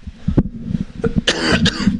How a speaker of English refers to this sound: Excuse me. Sorry, I don't have a cough button with the way I'm set up today.